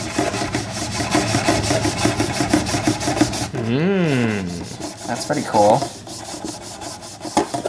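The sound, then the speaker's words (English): A cloth dampened with water scrubs rapidly back and forth over paper in quick, even rasping strokes for a few seconds to dampen it, followed by a gliding vocal sound and a brief spoken remark. “So I've got a wet cloth here.”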